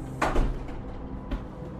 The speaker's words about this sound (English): I hear him and the other man fumble at our front door for hours until it opens.